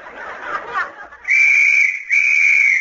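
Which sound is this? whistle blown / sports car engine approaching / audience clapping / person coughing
whistle blown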